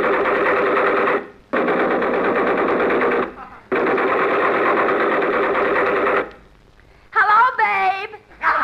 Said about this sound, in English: Look, they're digging up the streets with those air hammers. Be careful.